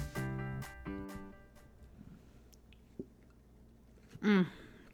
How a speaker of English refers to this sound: I am sipping on chestnut praline latte. It's one of my favorite drinks, and it's only offered during the holiday season at Starbucks.